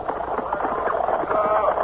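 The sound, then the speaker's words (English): Hooves of a black horse clatter in a quick, steady clip-clop as it pulls an open chaise along a winding road at dusk, the rapid beats running continuously at moderate loudness with a rolling, rattling undertone. “It was toward dusk, and all of a sudden, from behind me, traveling at that reckless clip for those roads, a fiery black horse pulling an open chaise caught up to me from behind.”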